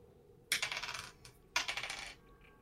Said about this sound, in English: I'm going to roll the damage dice for this one.